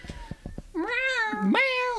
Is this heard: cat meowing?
yes